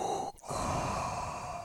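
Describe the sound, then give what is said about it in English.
A person imitates heavy, rasping breathing: a long breathy rush, a brief catch, then another drawn-out hissing breath, loud and without any talking. “No, it was something directed to not wanting to hear your breathing as well.”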